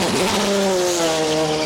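A GM Corvette race car engine roars, its steady high-pitched whine holding a sustained pitch with a slight rise, loud and continuous with no talking.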